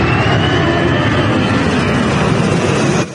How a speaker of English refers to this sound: A huge Australian Air Force plane flying low over the city as part of its River Fire Arts Festival. The C-17 Globemaster transport aircraft flying just 100 meters over the Brisbane River.